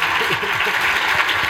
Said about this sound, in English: Oh, yeah. Clap, clap.